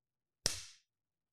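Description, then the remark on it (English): A single sharp hand clap, demonstrating a quarterback clapping in a football huddle, rings out on its own, a crisp snap with a short fading tail, followed by silence. “Just clapping.”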